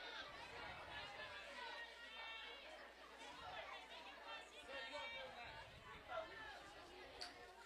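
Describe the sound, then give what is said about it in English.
A crowd of Hornet fans cheering on their team at a ball game during a full count, a steady wash of many overlapping voices at moderate loudness, rising in a few brief swells without any clear words standing out. “Hornet fans in the background cheering them on.”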